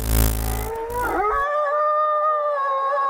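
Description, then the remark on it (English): A wolf, Custer the Wolf, lets out a single long howl that swoops upward and then holds a steady, clear tone, following a brief burst of low rumbling noise at the start. “You have accessed entry 308.JN1012, certificate number 52363. Custer the Wolf.”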